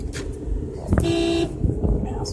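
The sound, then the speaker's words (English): A single car horn blares for about half a second in traffic in Arizona, heard from inside a car, a loud, steady honk cutting through the low rumble of traffic and engine noise around it. “Okay, I'm sorry. I'm in the car. These people in Arizona don't know how to drive.”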